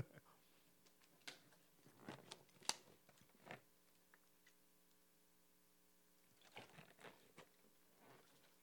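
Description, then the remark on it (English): Crunchy chewing of crackers into a microphone comes in irregular bursts of crisp, clicky bites, pausing briefly midway, over a steady low electrical hum with no talking. “I don't want to be all chewing in the mic, but of course you can hear that I got food in my mouth.”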